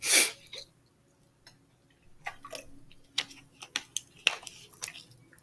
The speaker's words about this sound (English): Excuse me. Let me get some water.